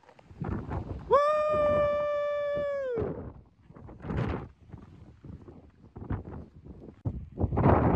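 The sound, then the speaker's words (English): Wind gusts at the top of Cascade Mountain buffet in rough, rumbling surges that rise and fall throughout, with a steady, high howling tone sounding for about two seconds near the start. “Every time I pull my phone out, the wind kicks up.”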